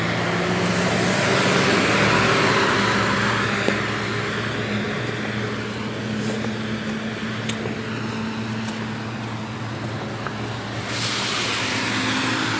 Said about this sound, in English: You're not even burning out. Just revving your motor in the parking lot. And you know what? It sounds like shit. That's what they're doing over here. Revving their motor over here in the parking lot and it sounds like shit.